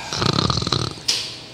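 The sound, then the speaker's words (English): A female pet pig grunts and snorts in a quick run of rough, nasal pulses, ending with one louder breathy snort; no one talks. “You literally have a pig. Yes, I do. She's my pet.”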